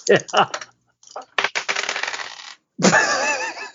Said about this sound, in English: So am I going to roll two dice and take the lower?